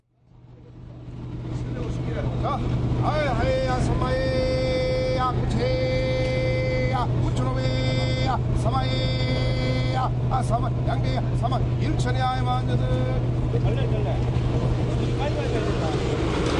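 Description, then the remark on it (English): A busy harbour fish market in Busan, South Korea, early in the morning, with fishing boats pulling up alongside and unloading: a steady boat engine rumble, indistinct voices and repeated bright tonal calls or horn-like toots sounding in bursts over the drone. “Early here in the morning at the fish market, the fishing boats are actually pulling up alongside and unloading.”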